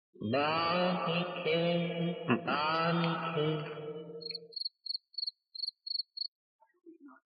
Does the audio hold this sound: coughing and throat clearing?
no